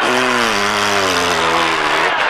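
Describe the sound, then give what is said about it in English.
A long, loud, buzzy fart, a follow-up 'Birmingham blunderbuss' in a farting contest, rumbles steadily for over two seconds, its low raspy pitch sagging slightly as it goes, with no talking over it. “And that's a follow-up Birmingham blunderbuss.”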